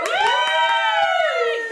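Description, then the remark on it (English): A studio audience cheers loudly, with sustained high whoops held for nearly two seconds over scattered claps, pitch sliding slightly downward near the end. “So, can I have a cheer from everyone in the live studio?”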